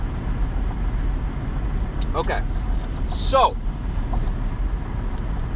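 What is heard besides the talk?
car driving on road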